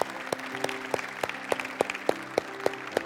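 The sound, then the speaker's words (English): An audience applauds God after a prayer, a steady, rhythmic clap with sharp beats about three per second, over a sustained low musical drone with no voices. “Let's give God a round of applause today, can we?”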